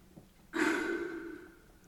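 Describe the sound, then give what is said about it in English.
A voice imitates heavy mask-respirator breathing: a single long, raspy, hollow-sounding breath that starts abruptly and slowly fades, with no talking. “You sort of do a few breaths and then you do the talking.”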